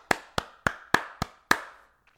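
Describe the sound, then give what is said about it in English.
Six sharp hand claps in a slow, steady rhythm, each crisp with a short ringing tail, followed by silence. No one speaks. “Give me an applause.”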